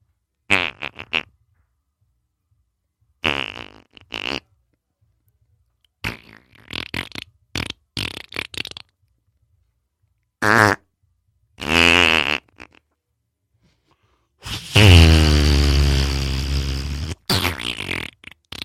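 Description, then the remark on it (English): A string of buzzy, sputtering fart noises in separate bursts, short and punchy at first, ending in a long, loud, drawn-out one that drops in pitch, with no talking. “I was just kind of farting around here.”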